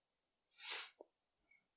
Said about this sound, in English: Ooh, almost had a sneeze there.